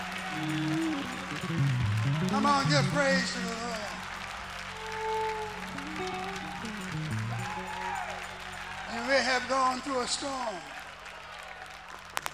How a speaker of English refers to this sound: Everybody clap your hands and give praise to the Lord.